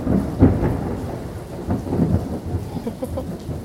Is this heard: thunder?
yes